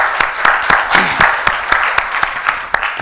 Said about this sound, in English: But you chose to be here in the house of the Lord, and I applaud you for that this morning. Amen. Amen. Give yourselves a hand.